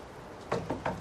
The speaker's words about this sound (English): So now they're at a seedy motel walking along, you know, to knock on a door.